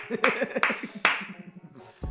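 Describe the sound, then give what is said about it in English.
Three sharp hand claps spaced about half a second apart, each trailing off in a noticeable echoing decay, with a low voice murmuring underneath. “You bastards didn't clap.”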